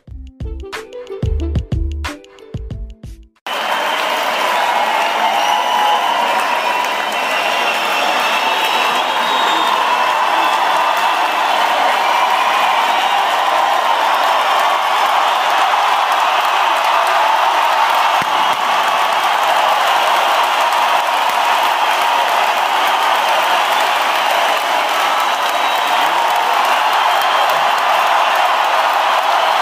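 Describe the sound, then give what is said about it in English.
An applause sound effect pressed on a soundboard: a brief tonal snippet gives way to a dense, steady wash of crowd applause with scattered cheers, loud and unbroken for nearly half a minute without fading. “If I had an applause button or some shit like that, I would press it right now.”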